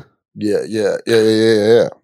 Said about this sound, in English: Can't be yawning